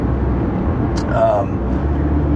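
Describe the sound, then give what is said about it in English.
Steady low rumble of a car cabin on the move in Southern California, with constant road and engine noise and a brief faint tonal sound near the middle. “It's not really an official episode, so I just decided to record it here in the car.”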